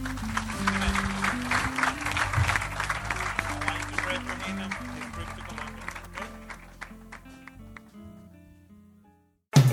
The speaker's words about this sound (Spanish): Amén, Señor. Amén. Un aplauso al Rey.